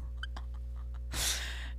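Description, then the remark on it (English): A single sharp hiccup, a short breathy catch of air, pops up against a low steady hum, with no talking. “Do I have the hiccups? I think I do.”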